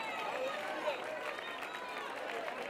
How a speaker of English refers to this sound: Go ahead. Don't stop clapping.